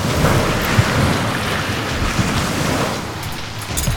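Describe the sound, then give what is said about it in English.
Heavy ocean swells of about 40 feet surge and crash over a landing amid a roaring storm wind, a dense, continuous wash of noise that swells briefly near the end, with no voices present. “Another wave's rolling in. It's coming over the top of the landing.”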